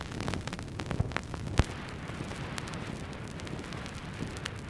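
An old vinyl record, heard from a digital file made of it, has a long run-in groove that crackles steadily, a soft bed of surface hiss dotted with scattered pops and a couple of sharper clicks, with no music or voices yet.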